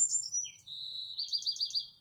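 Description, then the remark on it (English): A bird sings a high, bright spring song: a few whistled notes sliding down, a long sustained tone, then a quick run of rapid trilling chirps, clear and fairly quiet with no talking. “Beautiful spring song.”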